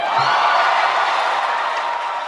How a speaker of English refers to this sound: The crowd is cheering. She gives this speech.